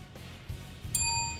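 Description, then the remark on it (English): A single light bell ding, rung for a correct answer in a quiz, strikes near the end and rings on with a bright, sustained shimmer, fairly soft over a low background rumble. “Give us a heartier bell than that.”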